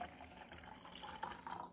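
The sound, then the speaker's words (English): Tea pours steadily into a cup for the speaker's son, a continuous splashing trickle that brightens slightly toward the end as the cup fills, with no voices. “Oh, pouring it.”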